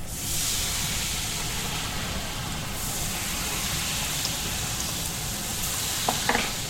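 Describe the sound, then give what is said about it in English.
Drops of batter sprinkled into a vat of hot frying oil hiss and sizzle steadily, a dense crackle with a few sharper pops near the end, as a cook tests whether the oil is hot enough before frying; no one speaks. “Before frying, he checks to see if the liquid is hot enough by sprinkling a few drops of batter into the oil and listens.”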